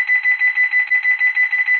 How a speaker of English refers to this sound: We having some alarm issues.